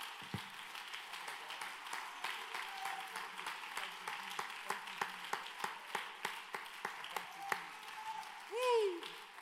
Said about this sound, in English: And if you believe that he heard you and you believe that he's going to work on our behalf tonight, would you just clap your hands one more time in this room as you're seated.